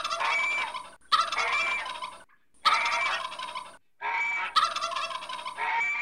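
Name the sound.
turkey gobbling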